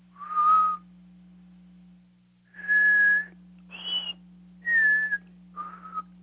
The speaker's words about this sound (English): That's a tritone, and I don't know of any birds around me that make that, but pied butcher birds do.